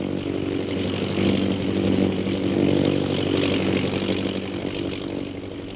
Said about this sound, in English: Meanwhile, far to the south of Bhutan's camp, an airplane carrying Captain Carstairs and Lieutenant Rogers of the Royal Air Force approaches Dumba Pass.